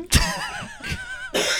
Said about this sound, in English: Okay, you can stop doing that now. Yeah. I genuinely have to cough. I thought it was real. Yeah, it was real.